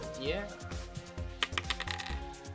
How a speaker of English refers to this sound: let's just roll some dice, shall we? Yeah, let's just go.